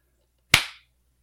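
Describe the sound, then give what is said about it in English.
A single sharp hand clap, made to sync a recording, with a crisp, bright attack and a short decaying tail, standing alone against near silence. “I'm hitting record now, so whenever you're ready, hit a clap”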